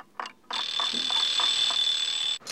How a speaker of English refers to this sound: An alarm clock 1 metre away.